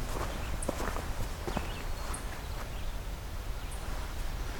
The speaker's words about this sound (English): That's a lot louder than I'm used to deer sounding in terms of the hoofs.